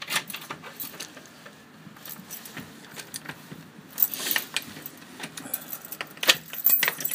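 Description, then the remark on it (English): Keys jangle and clink repeatedly as someone fumbles with a door lock, with irregular bright metallic rattles and scrapes, growing busier and louder toward the end, with no voices. “This door is being very contrary.”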